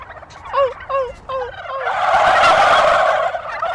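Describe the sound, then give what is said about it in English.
A few short, descending yelping calls give way to a loud, rattling burst of wild male turkeys gobbling back that swells for over a second, several birds answering at once in the open air. “And if I do that, the male turkeys will hear it, and they'll probably get turned on and gobble back.”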